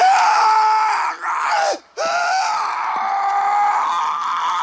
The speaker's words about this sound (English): All right. Will Smith scream.